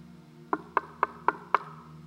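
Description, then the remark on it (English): Five quick, evenly spaced knocks on a door, crisp, rapped in a steady rhythm with no voices, over a faint low hum. “He's knocking.”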